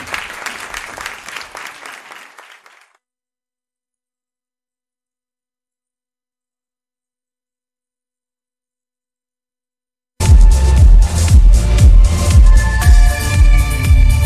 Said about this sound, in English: We're still clapping. Don't have to stop. More people? Great. That's awesome. Are they fading away in a black hole or something? How many different clap clips do we have?